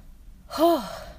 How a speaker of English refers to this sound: I really need to go do some meditation because my heart is beating fast. My breathing, I'm breathing hard. That means I need to calm down.